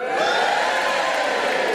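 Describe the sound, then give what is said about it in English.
An audience cheers and whoops together to vote that they believe a fact that snakes sometimes have human faces, in a dense, steady roar that holds at a fairly loud level without pause, with no distinct single voice standing out. “All those who believe my fact, cheer now.”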